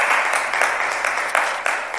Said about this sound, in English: Amen. Praise God. Give Pastor Nathan another round of applause.